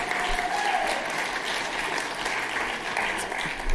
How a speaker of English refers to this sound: Y'all, give your elementary students a round of applause. Unbelievable.